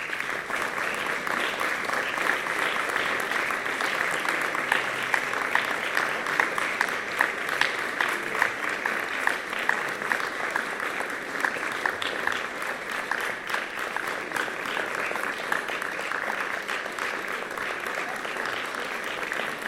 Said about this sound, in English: I'll give a round of applause.